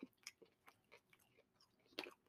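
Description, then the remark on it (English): Crisp crunching of small fried ramen topping bits, a plain grain snack that looks like Dippin' Dots, being chewed, a quick series of sharp bursts with a louder crunch near the end, no talking. “Sometimes they give those with ramen. What, these? Yeah, to add some crunch.”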